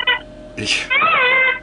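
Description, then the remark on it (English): A parrot squawks: a short chirp, then a harsh raspy screech, followed by a longer warbling, voice-like call, all loud and with no one talking. “Oh, it just sounds like a parrot.”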